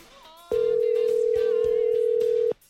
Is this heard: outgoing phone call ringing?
yes